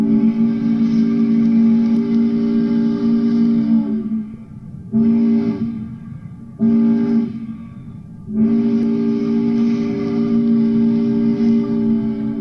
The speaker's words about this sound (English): One long blast, 2 short, and another long blast means that the boat was approaching a landing. It was also called a begging whistle because it alerted onshore workers that they were needed to unload.